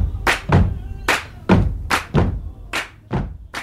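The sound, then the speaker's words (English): A steady rhythmic pattern of heavy, booming foot stomps on decking at a house alternating with sharp, bright hand claps, roughly eight hits over a few seconds, recorded as one of several takes, with no talking. “We're just doing take after take of stomps and claps, but sounded good.”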